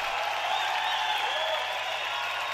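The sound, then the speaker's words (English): A crowd on its feet applauds and cheers in a steady, dense roar of clapping and voices that stays loud and unbroken for the whole moment, with no individual speech standing out. “Crowd is on its feet”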